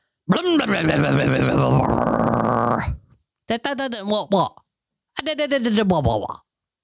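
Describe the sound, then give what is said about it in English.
A voice imitates a car engine with a long, rumbling, growly drone lasting a few seconds, then two shorter revving bursts separated by brief pauses. “You're making me sound like your car.”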